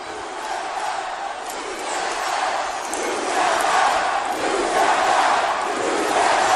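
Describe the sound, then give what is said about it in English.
A large wrestling crowd chants "Tapped out" in unison, a dense roar of many voices with a steady rhythmic swell that grows slightly louder over several seconds. “Tapped out. That's what this crowd's chanting here.”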